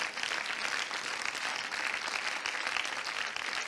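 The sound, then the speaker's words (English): An audience claps their hands to the Lord, a dense, steady wash of applause from many people that holds at an even level throughout, with no voices rising above it. “Come on, let's clap our hands one more time to the Lord.”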